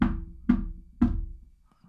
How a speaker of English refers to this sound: So you're sitting home, right? You get a knock on the door.